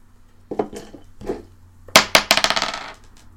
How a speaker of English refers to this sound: 8. This is disappointing. Okay, that's only an 8. After I rolled 2 entire dice, one of which has a highest possible number of 20, I rolled 8.